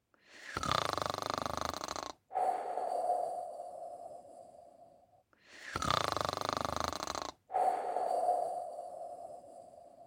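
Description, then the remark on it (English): Two slow, even snores from a sleeping crocodile, each a raspy drawn-in breath followed by a long, breathy exhale that fades out. Soft, with no talking. “He listened. And there was nothing but quiet snoring.”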